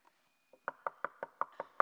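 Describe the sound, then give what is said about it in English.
A steady series of about seven firm knocks on a wooden door, evenly spaced, preceded by a couple of faint taps, with no voices. “I'm standing at the door and I'm knocking.”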